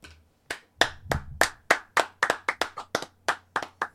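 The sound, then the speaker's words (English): Sharp hand claps from just a person or two, starting sparse and then quickening into a fast, slightly uneven run of about fifteen crisp claps. “Round of applause.”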